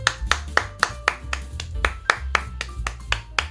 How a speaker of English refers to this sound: I gotta say, first off, everyone's on their game, so everyone gets an applause.